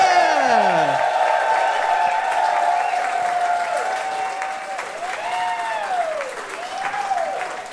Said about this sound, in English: Well, we're going to be joined on stage by two guests. Could you please give them a big round of applause now? You know them and love them.